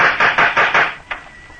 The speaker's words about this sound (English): Try the knocker again.